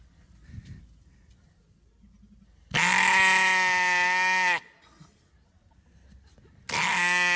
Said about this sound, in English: So like think of that beautiful image of a sheep you have in your mind. This is kind of like more what they're like.